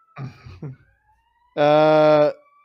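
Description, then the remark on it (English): A voice speaks briefly, then a loud, steady, buzzing siren blast sounds for under a second, with a faint, thin wailing tone lingering before and after it; many sirens outside an apartment. “What is happening outside my apartment right now? There's so many sirens.”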